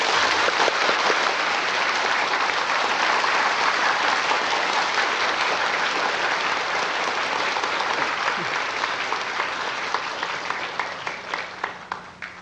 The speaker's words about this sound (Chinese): 现在请大家以最热烈的掌声恭请师父开始。